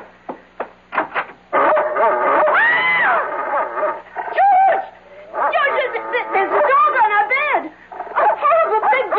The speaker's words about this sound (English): Take him away. It's only a dog, for Pete's sake. He's not going to hurt you. Get it out, George. Please.